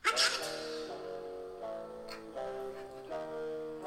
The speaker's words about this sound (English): I don't know why there was like a sneeze at the beginning of this one.